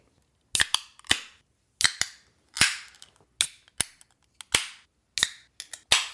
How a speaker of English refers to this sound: And so, without further ado, I guess we'll crack these beers and then we'll get everything poured up and get started.